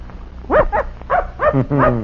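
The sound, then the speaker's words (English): A young hound puppy, out for training in tracking a scent, gives a run of high, sharp yips and small barks, about five quick bursts, with a faint low hum underneath. “That's a good little puppy.”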